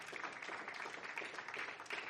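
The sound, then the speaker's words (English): An audience applauds together as a clap offering to the Lord while musicians come up, a dense, steady wash of many overlapping hand claps with no clear rhythm, moderately loud and sustained throughout with no speech over it. “Give the Lord a clap offering as our musicians come.”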